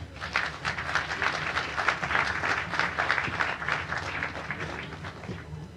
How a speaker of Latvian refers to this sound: Tas pat ir jūsu pienākums atbalstīt ar vētrainiem aplausiem.